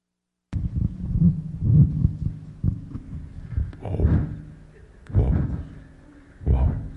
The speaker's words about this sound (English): That's a whale.